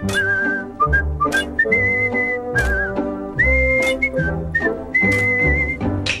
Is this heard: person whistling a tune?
yes